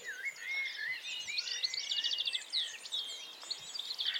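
A busy dawn-chorus of birdsong, many birds chirping, trilling and whistling at once in a continuous overlapping tangle, moderately loud with some voices close and others farther off.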